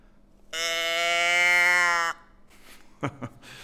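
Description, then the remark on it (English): A toy moo cow, demonstrated as a sound effect, lets out one loud, steady, reedy moo lasting about a second and a half, followed by a couple of soft handling clicks and thumps. “This is a little moo cow.”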